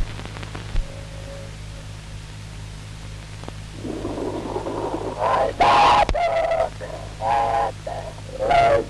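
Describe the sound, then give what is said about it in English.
A train whistle at a rail crossing, shaped by a Sonovox talk box into several voice-like, word-shaped bursts with rising and falling pitch, following a few seconds of low hum and hiss. “I've just returned from a trip across country by rail, and at every crossing, this is the way the train whistle sounded to me.”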